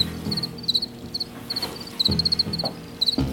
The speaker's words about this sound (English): I read about like a long-standing colony of crickets in the Paris metro that people feel very fondly towards.